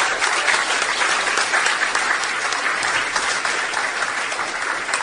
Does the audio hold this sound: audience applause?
yes